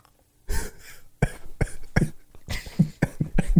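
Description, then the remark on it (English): A burst of harsh coughing: several rough coughs in quick succession with breathy gasps and throat noises between them, fairly loud and with no talking. “You have to be silent when you cough.”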